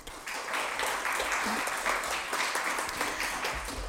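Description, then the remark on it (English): A lecture audience applauds steadily for about four seconds, dense overlapping claps forming an even, moderately loud wash of noise with no voices over it. “So a small round of applause.”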